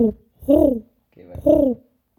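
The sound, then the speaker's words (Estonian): A person imitates a pigeon's cooing with two low, throaty coos about a second apart, fairly loud, with no other talking. “Siis ma oskan meid ikka tuviga teha.”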